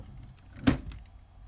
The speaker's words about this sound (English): And she ran to her room, shut the door.